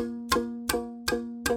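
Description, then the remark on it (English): Four evenly spaced, sharp metallic ticks, each leaving a short pitched ring: a ticking-clock element in a trailer music track, played as a steady musical pulse, with no voices. “And then the rest of it is I'm going to say boring because it's just things like ticking clock.”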